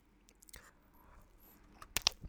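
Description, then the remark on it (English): Someone chews crunchy chocolate: soft wet mouth sounds build to a couple of sharp, bright crunches near the end, with a quick snap between them. “Some edible ASMR.”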